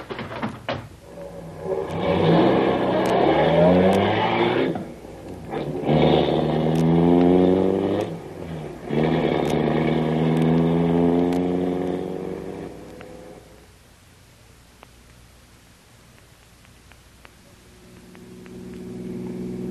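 A car engine, Grogan's car, roars and accelerates hard in repeated surges while chasing another car, its pitch climbing with each gear, loud, before dropping away to a low rumble.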